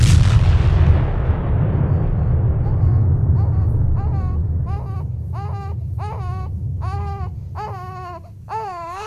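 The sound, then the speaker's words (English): A sci-fi sunbolt energy cannon fires with a loud, booming blast that decays into a long low rumble, then an infant begins wailing in repeated, rising bursts over the fading roar. “Commander, they're charging their sunbolt cannon. It's powering up.”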